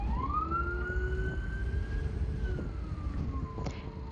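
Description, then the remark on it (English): An emergency vehicle siren wails over a steady rumble of traffic, its tone climbing, holding, then sliding lower as it passes by. No one speaks. “It's the sirens, confirmation.”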